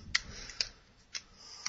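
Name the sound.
keyboard typing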